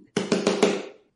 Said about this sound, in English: Well, now I have to go grab it so I can knock on it.